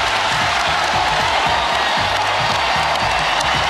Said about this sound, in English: This crowd can feel it, and they are chanting Tara.